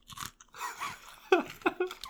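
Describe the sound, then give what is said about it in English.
A crisp bite into a freshly pickled pickle, followed by a few wet crunching chews over about two seconds, fairly loud and with no talking. “I'm going to crunch into it.”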